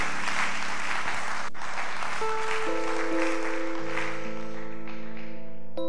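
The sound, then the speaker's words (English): An audience claps hands in dense, steady applause throughout, with sustained organ-like chords entering partway and holding under the clapping to the end. “Yes, if you are clapping your hands, please do it well.”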